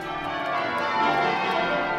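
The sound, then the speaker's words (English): Church bells ring continuously in Cambridge to welcome UN Secretary-General Antonio Guterres as he collects an honorary degree. Several bells overlap into a dense, sustained metallic peal with steady loudness, with no voices present. “No, no one's getting married. These are the bells welcoming United Nations Secretary General Antonio Guterres to collect his honorary degree from Cambridge,”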